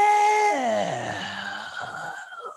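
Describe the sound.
A growl sound effect: a single drawn-out growl, voiced like a moaning wail, that starts fairly high and slides steadily downward in pitch over a couple of seconds before trailing off into a rough, fading rumble.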